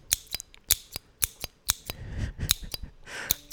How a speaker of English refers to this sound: All right, let's get this stapler remover again.